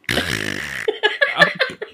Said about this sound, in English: I'm sorry, it's a fart. I'm not feeling very well.